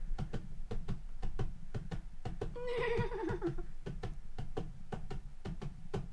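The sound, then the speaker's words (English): A person mimics horse hooves with mouth clicks, a steady clip-clop rhythm throughout, with a short vocal whinny imitation breaking in midway. “All right, that's enough horse foot. God, I should totally be a horse foley.”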